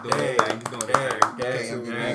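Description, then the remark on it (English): A few sharp hand claps, irregular, pop out over someone talking, about four distinct smacks spread across a couple of seconds. “So, you know, like, clap up.”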